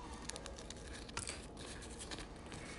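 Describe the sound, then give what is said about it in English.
Soft crackling and tearing of thin, flimsy rolling paper as it is slowly rolled, with a string of brief dry crinkles and snaps over a quiet hiss and no voices. “It's already cracking.”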